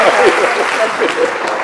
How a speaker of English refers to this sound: Please, let's give a warm round of applause. Thank you so much.